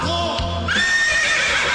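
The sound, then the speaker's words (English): A man, a talent-show performer, imitates a horse's whinny: a loud, wavering neigh that rises into a shrill, quavering cry and holds for nearly two seconds with no other talk. “And that's actually him making that horse noise.”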